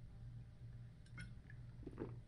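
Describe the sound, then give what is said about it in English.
A speaker pauses to drink some water: faint, wet sipping and swallowing sounds over a low steady hum, a few soft gulps spread across the pause, ending with a short sharp knock like a glass being set down. “I'm gonna take some water.”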